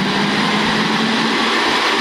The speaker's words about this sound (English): they're top fuel dragsters running on nitromethane, loud enough to cause hearing damage